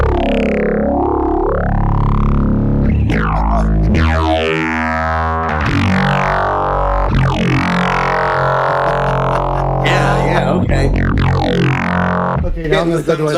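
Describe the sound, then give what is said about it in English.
A distorted bass guitar plays through a sweeping filter controlled by an envelope, its gritty tone opening and closing in vowel-like swoops across several loud, sustained notes with no pauses. “Okay, I'm gonna try a different kind of distortion.”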